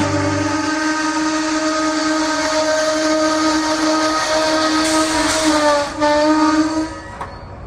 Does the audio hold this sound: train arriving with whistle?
yes